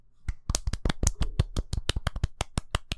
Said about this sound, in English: So, should we golf clap it? Absolutely.